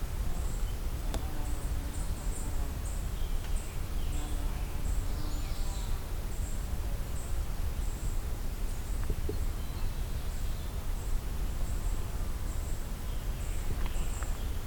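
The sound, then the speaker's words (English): Faint songs of a blue-headed vireo and a magnolia warbler, both singing, drift in short phrases over a steady outdoor hiss, with a regular high insect-like chirping pulsing throughout. “Got blue-headed vireo and magnolia warbler. Both vocalizing here, both singing.”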